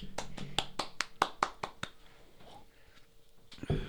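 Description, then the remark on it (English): A single person claps about ten times in a quick, steady rhythm, sharp and fairly loud, then stops, leaving only faint background noise. “That was really sad because you're the only one clapping.”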